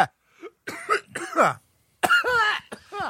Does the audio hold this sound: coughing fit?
yes